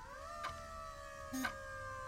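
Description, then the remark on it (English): A sound truck parked at the curb halfway down the block, on a chilly June day, blares a steady, sustained electronic tone from its loudspeaker horns, siren-like and unbroken, with two brief bursts of harsh noise cutting through. No one speaks. “But the scent was normal enough, except for the sound truck that squatted at curbside halfway down the block. Its speaker horns blared.”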